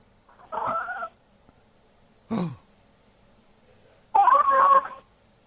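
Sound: cat vocalizing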